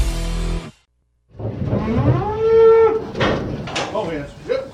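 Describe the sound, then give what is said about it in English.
A cow lets out one long, drawn-out moo, loud, rising and then holding steady. A brief noisy burst and a short silence come before it. “It's that time of year when we're loading trailers and we're hauling cattle.”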